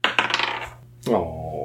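A quick rattling clatter of dice tumbling across a hard tabletop during a tabletop role-playing game's dexterity saving throw, a burst of small sharp clicks that fades out, followed after a brief pause by a louder clunk with a lingering ring; the roll comes up 2.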